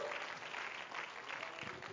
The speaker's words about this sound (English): Why don't you clap your hands to him one more time? Praise God.